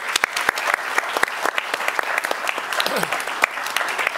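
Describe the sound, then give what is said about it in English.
An audience at a USIP event claps steadily, a dense patter of many hands with sharp individual claps standing out, holding at an even, fairly loud level throughout with no one speaking. “I can't, but I can certainly applaud.”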